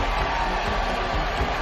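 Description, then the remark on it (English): A hockey arena crowd in Danbury cheers after Heimovitz scores for the Trashers, a dense, steady roar of many voices that holds at an even level throughout without rising or fading. “And it is erupted here in Danbury.”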